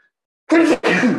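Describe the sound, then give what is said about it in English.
A sneeze comes in two loud, rough back-to-back bursts, each voiced with a low throaty tone, after a moment of silence. No one speaks. “Bless you.”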